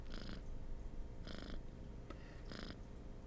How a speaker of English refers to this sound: two quick purrs for no, like a purr purr will be no.